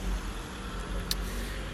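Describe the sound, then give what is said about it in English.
A car passes, its low, steady road rumble filling the whole moment, with a brief faint click partway through and no talking. “Sorry, car.”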